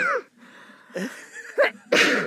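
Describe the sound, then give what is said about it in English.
A person, having made themselves sneeze, takes a few quick, gasping inhales that build up before a single loud sneeze bursts out at the end. No one speaks. “I'm going to sneeze.”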